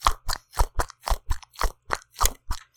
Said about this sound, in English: Because it's a cat. It's a cat stress ball. It's good pussy.